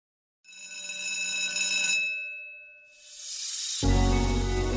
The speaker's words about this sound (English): Well, you heard the bell. Class is dismissed.